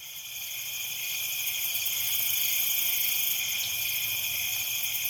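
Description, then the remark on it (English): A steady chorus of crickets chirring continuously in a high, shimmering drone, fairly loud and unbroken for the whole stretch, with no voices and only a faint low rumble beneath. “Cue the crickets.”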